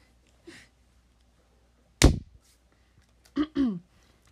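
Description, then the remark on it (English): A single sharp, loud hand clap rings out and decays quickly, with short bits of quiet vocal sound before it and a brief voiced murmur shortly after. “Okay, well, I'm going to clap again.”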